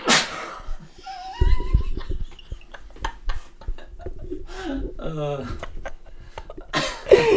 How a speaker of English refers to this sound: sneezed and farted at the same time. God. So childish.